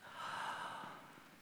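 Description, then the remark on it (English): A single deep inhale drawn through the nose, fairly loud, with a breathy rush that swells for about a second before tapering off. No talking alongside it. “You inhale.”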